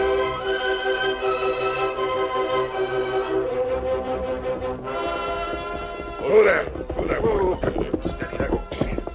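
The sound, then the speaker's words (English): Horse hooves clip-clop in a quick, steady rhythm beneath sustained orchestral music, growing more distinct in the second half, where a brief voice-like or whinnying sound also rises. “Get up, boy. Come on, Silver.”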